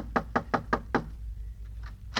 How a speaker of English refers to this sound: this must be the house where the old prospector lives. Yeah, knock on the door.